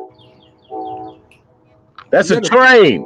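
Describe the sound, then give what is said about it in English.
A train horn sounds one steady, chord-like blast of about half a second, preceded by a fainter sustained tone. A loud voice with sweeping, sliding pitch then takes over. “And there's a horn.”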